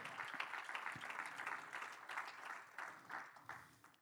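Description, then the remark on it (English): An audience claps their hands in praise to God, a dense wash of many overlapping hand claps with no clear rhythm, moderately loud throughout and fading slightly toward the end. “Would you clap your hands and give God praise for that?”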